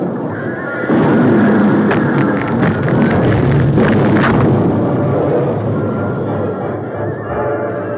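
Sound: horses whinnying in panic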